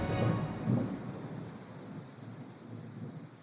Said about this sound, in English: lightning flashed brighter than the sun. An ear-splitting crack ripped through the campsite.